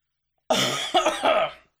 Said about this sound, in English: Yeah, he just coughed. Gnarly.